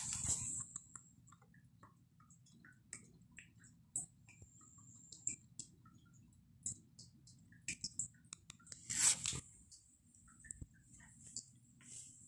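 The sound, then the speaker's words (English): Soft, steady rain falling outside: a low, constant patter with scattered irregular drips and sharp little taps, a few louder splashes, quiet overall, and no one speaking. “Hello everyone, it's raining outside, so I get a little ASMR for you.”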